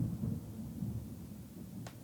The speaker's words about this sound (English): Is that thunder? Is that outside? I think that's thunder. That was so weird. Oh. Wow, it's, like, a real rain. Well, there we go. So that was very loud. It was so loud. I thought somebody was like dragging furniture upstairs.